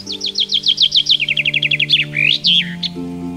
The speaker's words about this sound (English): A few weeks later, the newly leafed maple is a haven for migratory birds. Several springs I've been serenaded by a rose-breasted grosbeak perched in the tree while planting morning glories.